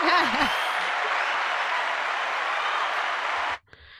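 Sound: applause sound effect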